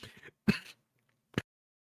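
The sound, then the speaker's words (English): A person performs a short, theatrical coughing fit as a dying tabletop role-playing game character, Planetary Governor Jaromir Zelensk, a foppish nobleman. It has a rough rasp, a stronger hacking burst, then a pause and one last sharp, dry cough. “I say coughing and dying.”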